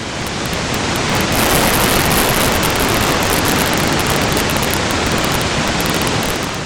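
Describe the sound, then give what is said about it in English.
An electrode recording from a rat's gustatory cortex as the rat is given a splash of water: a steady, loud hiss of static packed with rapid, irregular crackling pops of neurons firing action potentials, continuous throughout, with no voices present. “Those little pops are all action potentials, neurons firing off signals to one another about, well, they're not totally sure.”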